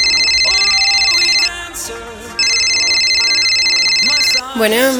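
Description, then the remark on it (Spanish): A cell phone rings unanswered with loud, bright electronic tones in two long bursts separated by a short gap, with faint voices murmuring underneath. “me choca que nunca me contestes el celular.”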